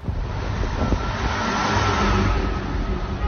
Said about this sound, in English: Wagner's convoy of tanks and trucks continue to move up their motorway.